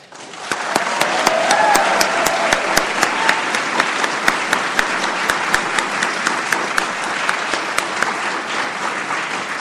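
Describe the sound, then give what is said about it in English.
Sustained audience applause at an awards ceremony, after the winner of the 2019 Thomas E. Dewey Award for Kings County is announced, fills the whole stretch, a dense wash of many hands clapping at a steady loud level, with sharper individual claps popping out above the crowd noise. “And since you're already clapping, I'm done.”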